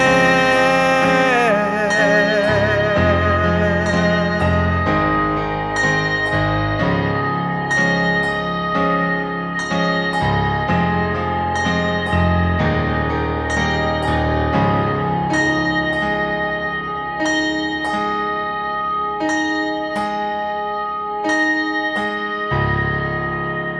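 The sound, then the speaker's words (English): A soul R&B pop song by a singer-songwriter plays steadily at full volume, with rich sustained instrumental chords and crisp percussive hits landing in a regular rhythm, and no one talking over it. “He's a talented soul, R&B, pop singer-songwriter whose sound is fresh, pure and honest.”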